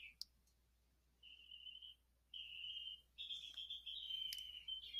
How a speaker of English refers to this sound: Can you hear that? That's the birds. So pretty, y'all. Spring is coming in, and this neighborhood, we've always had birds